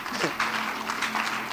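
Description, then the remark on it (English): An audience claps for Jesus in a dense, noisy burst of overlapping hand claps that swell and fade in loose waves, with a steady low hum running underneath. “clap for Jesus.”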